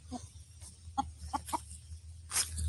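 A few short, soft clucks from chickens in a garden, spaced irregularly over a low outdoor rumble, with a brief rustling hiss near the end.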